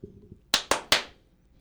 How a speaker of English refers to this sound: I don't know what the clap was for, but yeah.